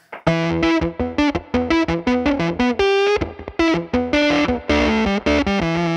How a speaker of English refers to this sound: Right now, I have it set on like a gated kind of fuzz sound, which is interesting to me. I'll turn this slap back off.